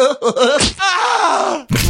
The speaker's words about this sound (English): can we get a crotch slap sound? Yeah crotch slap.